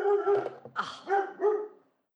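A dog barks several times in close succession, loud, the barks drawn-out and tonal with a whiny edge, then stops after about two seconds. No one speaks.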